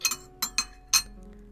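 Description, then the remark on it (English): One sugar lump clinks into a china teacup as tea is served in the afternoon, a handful of bright, quick taps in an uneven rhythm, with a soft hum in the background and no talking. “Sugar. One, please.”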